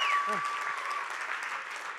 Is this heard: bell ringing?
no